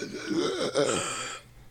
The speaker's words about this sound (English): Let me clear my throat. Now let me clear my throat.